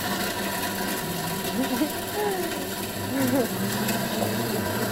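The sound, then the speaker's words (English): An electric blender blending a drink whirs steadily and loudly from start to finish, a constant motor drone, with faint, indistinct voices murmuring underneath. “I'm going to pour this into the blender.”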